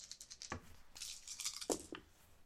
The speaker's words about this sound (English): would get 5 dice together, 5 D6s, roll those, and then add them together. So let's have her do that real quick.